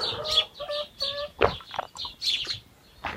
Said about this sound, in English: Right, let's just give these chickens their pellets. Good morning, who's coming out first?